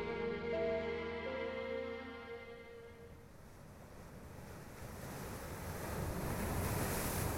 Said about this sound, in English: The methodical crashing of the ocean current against the boat was the only sound heard by the three souls that moment.